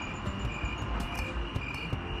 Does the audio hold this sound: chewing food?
no